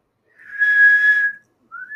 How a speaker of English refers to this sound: See, we can all whistle. We can all whistle.